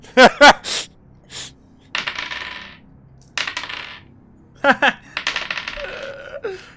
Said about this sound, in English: That's a lot of dice.